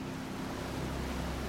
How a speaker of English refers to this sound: The sound of falling water.